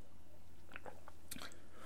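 A quiet sip of water: a few soft, wet mouth clicks and a gulping swallow over a low, steady hum, with no one talking.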